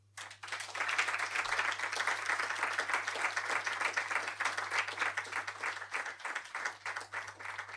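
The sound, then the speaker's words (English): Sustained applause from a crowd, a dense steady patter of many hands clapping at fairly even loudness for several seconds, with no voices over it. “Just while we gather ourselves, just I think we should just do another round of applause.”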